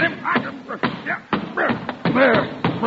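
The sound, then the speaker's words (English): A series of sharp, heavy whacks lands in quick, uneven succession as someone repeatedly beats an umbrella, with excited voices talking over the blows. “You have just killed Mr. Chalmers' umbrella.”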